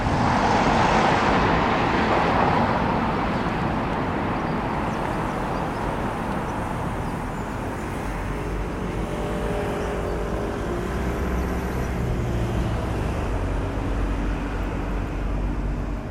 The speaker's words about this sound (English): But then if you turn your head to the right and look up, you have got all that traffic coming past and all that busyness going on across the bridge.